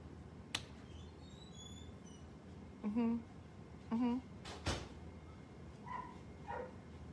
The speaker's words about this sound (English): Does somebody want to let the dog in?